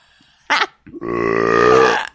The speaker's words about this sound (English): Sometimes I sip a mouthful of water and then burp before I can swallow it. And I think about how the water is now infused with burp flavoring.